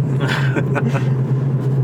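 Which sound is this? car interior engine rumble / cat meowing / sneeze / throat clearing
car interior engine rumble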